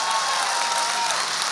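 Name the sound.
audience hand clapping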